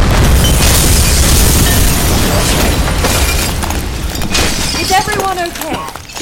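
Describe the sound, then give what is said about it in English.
A loud explosion blast booms out with deep rumbling and crashing, shattering debris, then gradually settles as faint shouting voices emerge near the end. “They're gonna blow it!”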